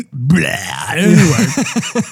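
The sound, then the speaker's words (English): A long, loud burp with a rumbling, croaky tone that stretches out and breaks into a few short pulses at the end. “The only thing I didn't get, excuse me, I burped.”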